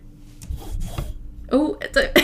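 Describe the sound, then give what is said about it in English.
Shiro, a white British Shorthair cat, sniffs at a microphone in a bathroom, making soft, rubbing snuffles and brushing noises for about a second. A few short, louder voiced bursts follow. “She's just sniffing it, if you can hear some of that.”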